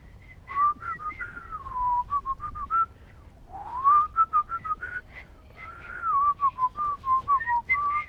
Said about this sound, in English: I'm just not really good at it yet. But I did learn how to whistle. Here, I'll try to whistle like people usually do.